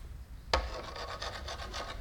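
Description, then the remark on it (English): A hard knock, then a hammer scraped back and forth across wood like a saw in quick, rhythmic rasping strokes, with no voices. “You can try to saw all day.”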